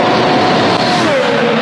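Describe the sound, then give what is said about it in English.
A loud, sustained high-pitched engine whine from a Haas VF21 Formula 1 race car with a Ferrari power unit, out on track, its pitch sliding downward as it passes, with no voices over it. “Let's take a look here at the Haas VF21 out on track.”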